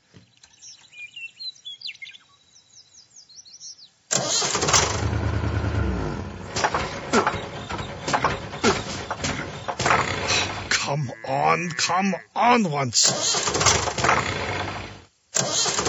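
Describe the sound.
Birds chirp faintly at first, then a loud tractor engine cranks and sputters over and over, straining to start on a cold morning in a yard in North Dakota, while a man's voice urges it on.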